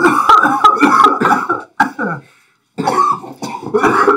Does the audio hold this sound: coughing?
yes